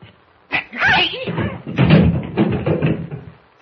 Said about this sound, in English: I kicked him in the shins.